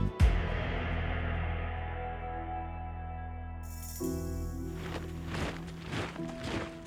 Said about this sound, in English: The footsteps of enemy soldiers echoed off the corners of St. Peter's Basilica in Rome.